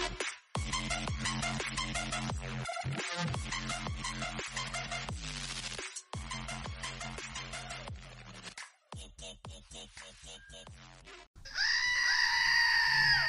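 A screaming goat toy being squeezed lets out one loud, long, shrill goat-like scream near the end, following a stretch of busy, rhythmic tonal sound.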